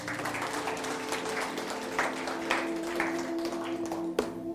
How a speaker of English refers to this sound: Give the Lord a clap, man.